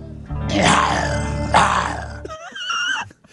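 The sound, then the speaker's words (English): A person growls like a lion: two long, rough, rumbling roars swelling in loudness, followed by a brief higher, wavering vocal tail. A human voice imitating an animal. “So I just start growling like a lion.”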